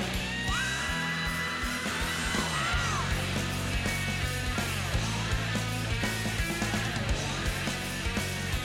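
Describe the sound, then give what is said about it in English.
A high, sustained classic rock vocal scream rises and holds over loud, dense band music at the start of the song, then the full arrangement of drums, bass and guitars, with wah-wah pedal on the guitar, keeps driving on. “It begins with like that … scream.”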